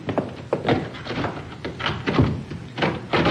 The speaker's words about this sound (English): I'll lock the door.